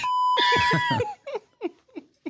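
A steady electronic beep holds for about a second, overlapped by laughter, then trails into several short, breathy bursts of giggling.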